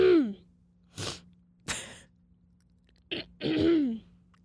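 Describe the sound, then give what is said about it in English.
A person who has been sick for about a week and a half clears their throat and coughs in a few sharp, harsh bursts spread over several seconds, ending with a longer, raspy throat-clearing, with no talking. “I cough one more.”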